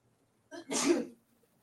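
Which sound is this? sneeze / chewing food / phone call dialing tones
sneeze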